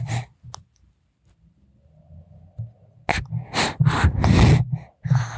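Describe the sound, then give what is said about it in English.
A baby makes a string of breathy, excited noises: short gasps and squealing bursts that build toward the end, after a quieter stretch of faint murmuring and soft breaths. “So yeah, you're making lots of noises, are you?”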